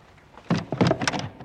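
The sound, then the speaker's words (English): A stiff door handle being rattled and jerked, a quick series of clunky knocks and scrapes lasting about a second, as if the door is stuck. “It's that stupid bleeding handle on the door.”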